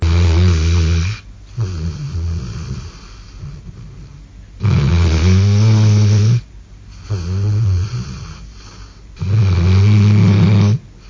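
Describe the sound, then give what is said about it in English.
A dog named Lincoln snores loudly, a buzzsaw snore with three long, rumbling inhales alternating with softer, shorter exhales in a slow, steady rhythm, no voices present. “It's the snoring. that was recorded by Joe a few days ago. And it's getting worse.”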